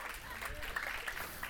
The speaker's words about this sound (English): You're not clapping for me, we're clapping for him. Come on.